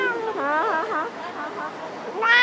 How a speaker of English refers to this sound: Meet Boss the cat. She's mastered the beckoning gesture of a Japanese lucky cat, and she picks out lucky lottery cards for her human.